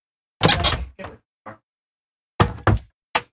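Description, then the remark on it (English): A cat, Pike, paws and bumps against the door of a recording closet he is not allowed in, making a series of loud, irregular thumps and rattles with short pauses between them. “can you get Pike away from the door?”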